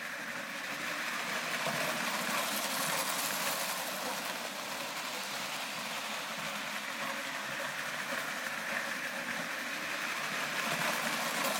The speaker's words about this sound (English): Fully functioning Lionel train set. Actually, we got two of them from the 1940s. My dad was a huge Lionel train collector.